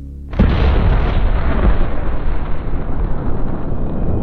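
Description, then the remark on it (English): The steam machine SteamHeart explodes as dynamite fuses run out, a sudden, deafening blast, then a heavy roaring rumble that stays loud and steady for several seconds, with no voices. “The explosion rocketed its frame sideways, and plates of metal and ceramic tile, ruptured pipes, blackened bolts, and burning wood tore through the air.”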